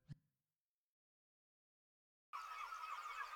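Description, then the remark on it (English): After a short click and a couple of seconds of silence, a dense chorus of summer birds chirping, played as a sound effect, starts abruptly and continues steadily, bright, like a summer morning ambience. “Maybe some nice summer birds chirping, since we didn't get to spend any time together in warmer weather.”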